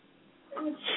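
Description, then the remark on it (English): A single sneeze: a brief voiced intake building up, then a sharp, breathy burst at the end, with no talking around it. “Bless you.”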